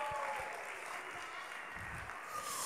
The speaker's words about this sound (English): So let's give them some round of applause.